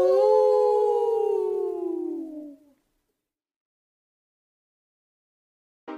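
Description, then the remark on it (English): As part of a song, a human voice imitates a dog's howl: one long, loud, harmonic note that slides slowly downward for nearly three seconds, then fades into silence, with a brief sound clipped at the very end. “Woof, woof, howl!”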